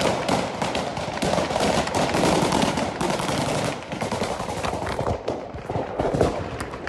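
Rapid bursts of gunfire, the Taliban firing on crowds of protesters, many of them women, in Kabul: sharp repeated shots crackle continuously over a dense, noisy wash of crowd commotion, loud throughout with no clear pauses.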